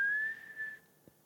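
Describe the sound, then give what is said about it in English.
A single sustained whistled note, steady and fairly clear, holding for under a second before fading out. No one speaks. “And then I heard this whistle.”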